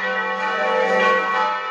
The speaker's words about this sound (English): Those are the church bells here at St. Luke. At first I thought, well, since we're not having any public masses, we should turn the church bells off. But no, I decided to leave them on.